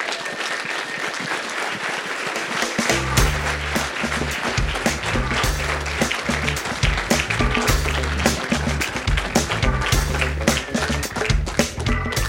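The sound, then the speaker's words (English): A large audience stands, applauding and cheering loudly to welcome a speaker, a dense, steady roar of clapping that swells fuller after a few seconds and carries on without a break, with no one speaking over it. “So we're going to stand up and cheer again.”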